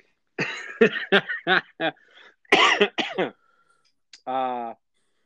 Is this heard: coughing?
yes